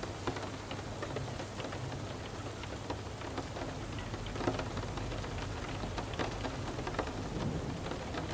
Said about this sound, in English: As you lay there, quiet and still, observing the sounds around you, feel the energy and healing properties of each raindrop tapping at your window.